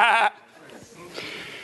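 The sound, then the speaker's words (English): A preacher in a sermon gives one short, loud, nasal "baa," mimicking a sheep's bleat with a wavering quiver, then cuts off into quiet noise. “All I hear is the bleeding of sheep.”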